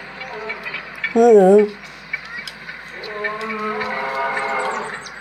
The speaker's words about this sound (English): Play it. Put it near the mic. Lions roaring compilation.